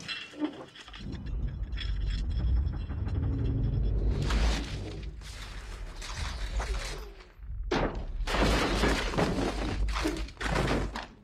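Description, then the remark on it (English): A run of loud explosive blasts in a film's Parisian street scene, fruit and cobblestones bursting into crashing, scattering debris over a deep continuous rumble, with several bursts in quick succession near the end; the blasts were made with high-pressure nitrogen. “the exploding Parisian street scene, where it has, like, all of these exploding, like, fruits and cobblestones and all of that.”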